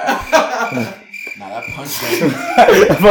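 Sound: voice imitating cricket chirping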